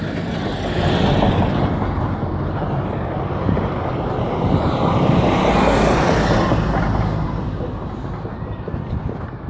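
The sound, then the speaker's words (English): Heavy factory buses carrying workers to a factory rumble past, a steady roar of engines and tires that swells midway and then eases, with no one talking over the traffic noise. “So it looks like the factory's open, because those are the factory buses that take all the people to the factory.”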